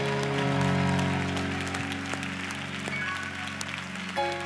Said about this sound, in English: Can y'all give a stronger clap than that? Come on.